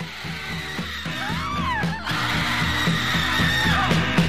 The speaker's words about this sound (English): And it's also just this great song because it ends with maybe one of the like longest unbroken stretches of screaming ever to be in a 3-minute pop song.